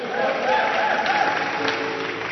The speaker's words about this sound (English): Clap your hands for the Lord. Pigia Bwana Yesu makofi. Oh, give the Lord a wonderful clap offering. Pigia Bwana Yesu makofi. Give the Lord a wonderful clap offering. Mpe Bwana makofi. And give the Lord a shout. Mpe shangwe.